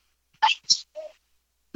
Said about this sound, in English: I'm going to sneeze. Hang on.